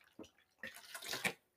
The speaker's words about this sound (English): Let me take a drink of water.